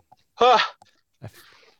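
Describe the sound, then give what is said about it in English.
A single sneeze: a rising, voiced 'ahh' wind-up followed after a short pause by a sharp, hissy burst that trails off. Fairly loud, with no talking around it. “Sorry, I'm going to sneeze here.”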